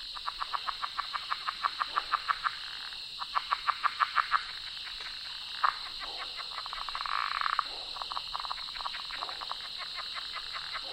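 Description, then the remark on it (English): Southern leopard frogs give rapid chuckling calls in autumn, runs of quick clicking pulses that come in bursts, over a steady high insect-like drone from a marsh. Nobody speaks. “Southern leopard frogs chuckling away in a marshy spot.”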